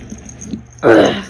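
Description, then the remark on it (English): An excited dog lets out one loud, sustained yelp or bark after a moment of near quiet, its harsh voice cutting in abruptly near the end. “Crazy dog. Going nuts, our dog.”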